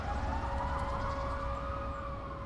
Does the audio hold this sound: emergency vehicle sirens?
yes